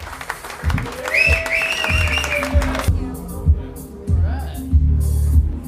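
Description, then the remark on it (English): A comedy show audience claps steadily and loudly for several seconds as comedians Kim Congdon, Jeff Dye and Zane Lamprey are brought up. A few high whoops and cheers rise over the applause early on, with low thumping beneath it. “Please give a warm, warm round of applause to Kim Congdon, Jeff Dye, and my old pal Zane Lamprey.”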